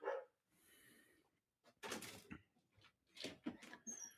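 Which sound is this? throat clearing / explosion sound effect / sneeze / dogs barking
dogs barking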